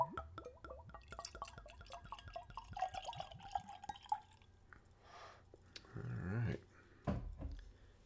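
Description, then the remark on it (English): Sfumato liqueur, served neat at room temperature, trickles and drips into a nosing glass, a few seconds of gentle pouring and splashing, then a couple of louder clinks or thumps near the end. No one speaks. “So let's pour ourselves some.”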